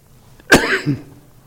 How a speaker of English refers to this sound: Sorry about this coughing. I don't know where this has come from.